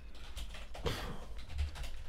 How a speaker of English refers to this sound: That's me typing furiously to find this out.